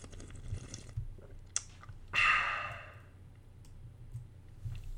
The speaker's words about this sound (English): Well, I'm going to take this break to enjoy a nice little sip of water. Little sip of water.